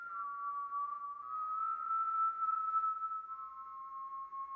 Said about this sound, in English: More sweetly and more subtly evil rose that weird whistling.